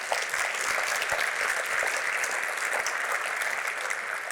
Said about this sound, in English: Round of applause for Columbus Pacific.